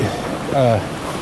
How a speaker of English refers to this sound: that was a little waterfall.